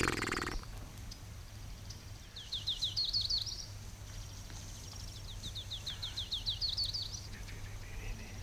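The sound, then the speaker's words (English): A distant warbler sings two high, quick phrases of rising, rapidly repeated notes, a few seconds apart, faint above a steady low background hum. “It's a warbler.”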